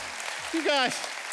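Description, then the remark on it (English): A steady wash of audience applause at a church service runs throughout, with a single voice letting out a short rising whoop midway through the clapping. “you guys have been so nice to me. Clapping like that.”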